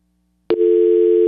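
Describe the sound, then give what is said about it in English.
After a brief click, a steady, loud telephone dial tone from the Clearview church phone system begins and holds unbroken to the end, with no one speaking. “is just reboot, turn off the phone system, and turn it all back on again, and then maybe we can get that going.”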